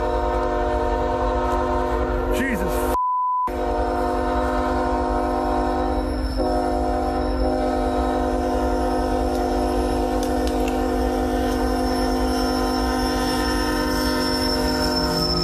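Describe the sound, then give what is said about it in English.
A train rumbles past as protesters standing on the tracks in front of it move out of the way, its horn blaring in long sustained blasts over heavy, continuous rolling noise from the tracks; a person briefly exclaims partway through. “So you can hear it as that train goes by.”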